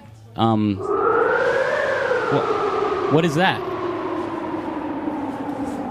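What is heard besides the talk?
wind sound effect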